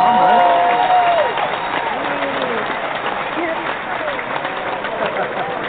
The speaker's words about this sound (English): Keep going. More applause.